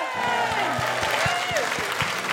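audience applause

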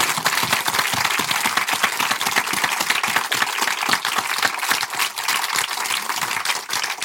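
audience round of applause

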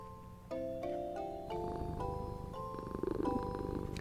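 cat purring loudly

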